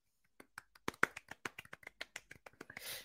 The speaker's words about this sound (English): And you could give me, just do like applause after each name. That would be great. We'll give them a little clap each name, okay?